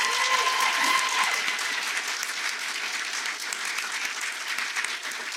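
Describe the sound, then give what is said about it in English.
A live audience breaks into applause for the guest Clint McElroy, a dense, steady wash of many hands clapping that holds at a fairly even loudness throughout, with a few brief tonal sounds at the very start. “I would like to give a round of applause to our guest, Clint McElroy.”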